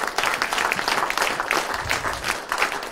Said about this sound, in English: Give him one more hand clap of praise this morning from your heart.